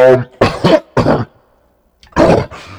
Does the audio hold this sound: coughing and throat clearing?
yes